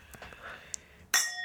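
Glasses clink together in a toast, one bright ring that lingers as a shimmering tone, preceded by a quiet moment with a faint light tick.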